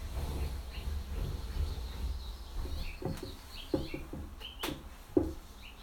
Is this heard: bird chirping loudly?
yes